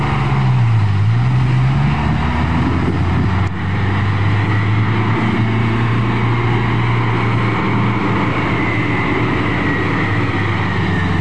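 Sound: bus engine pulling away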